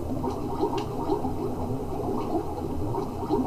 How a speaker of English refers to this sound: Swimming. We're swimming.